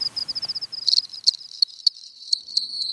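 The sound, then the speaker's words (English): A cricket chirps steadily in a high, rapid pulsing trill, with sharper clicks breaking in midway. It carries on alone, with no voices. “So you go outside at night and you listen for cricket song.”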